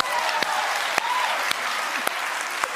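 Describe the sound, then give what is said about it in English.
Steady, dense applause from a crowd clapping on cue, a continuous wash of clapping with a few sharper individual claps standing out at irregular intervals. No voices stand out. “You're gonna, this is where you plug in plug in the applause.”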